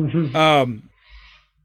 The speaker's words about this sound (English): I hear a bird too. That sounds pretty. Is that me? Cockatoo?